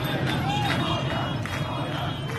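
A large crowd of street protesters in Iran and Iraq shouts and clamors outdoors over lack of water in summer 2021, a dense, steady roar of many voices with occasional louder cries rising above the mass, sustained throughout.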